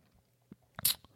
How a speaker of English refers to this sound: And first off, I'm going to take a sip of my beverage. Have you, anybody tried these?